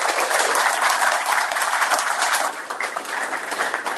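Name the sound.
audience applause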